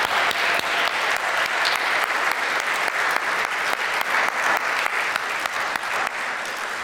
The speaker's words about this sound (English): Thank you. Would you all join me in applauding our 5 storytellers one more time?